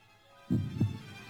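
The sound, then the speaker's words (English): A single low, muffled heartbeat: two soft thumps in a quick lub-dub pair, fairly quiet, followed by a faint lingering rumble with no voices. “giving the village statue of the king a heartbeat, which only stopped beating upon the king's death.”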